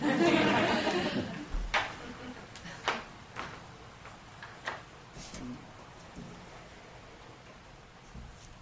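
Faint kitchen clatter: a brief rustling burst, then a scattering of irregular clicks and knocks, like dishes or drawers being handled, over a soft background hiss.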